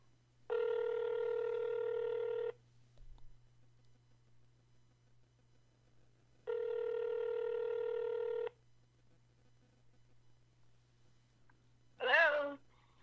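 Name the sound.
telephone dialing and ringing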